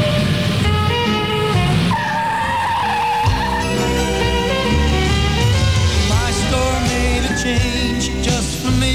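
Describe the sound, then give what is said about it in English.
A truck roars off with loud, sustained tire squealing and engine noise, the screech rising and wavering for several seconds against a busy, layered background. “Well, let's throw him on the truck and get out of here.”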